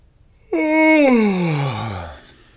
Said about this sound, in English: Y is for yawn.